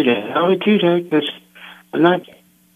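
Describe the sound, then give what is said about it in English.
A muffled, narrow-band telephone voice breaks up in fragments, with gaps of faint hiss between bursts before trailing off into a thin, steady line hum as the call drops out. “I'm going to pray for you because I think we lost you on your phone.”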